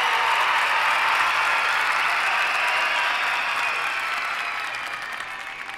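A canned applause sound effect: dense, steady crowd clapping at full volume that gradually thins and fades toward the end, with no voices over it.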